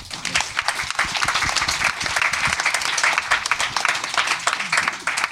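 Audience applause, a steady, dense wash of many hands clapping at once, fairly loud and sustained throughout with no voices standing out.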